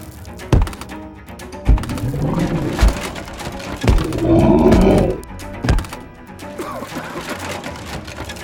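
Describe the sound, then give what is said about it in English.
A creature's deep, hearty bellowing roar swells for about a second as it tosses someone through the wall of a butcher's shop, amid heavy, evenly spaced thuds and crunching crashes through wooden planks, with a lower growling rumble before it. “Producing a hearty bellow, the creature tosses Hero through the wall of the butcher's shop.”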